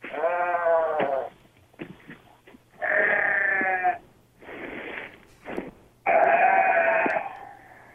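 Three loud, drawn-out goat bleats, each a wavering, nasal cry lasting about a second, separated by short pauses with softer breathy snorts and rustles in between. Clear, with no talking.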